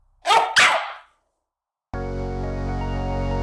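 A dog barks twice in quick succession, loud, followed by a brief silence before a steady, sustained musical drone begins.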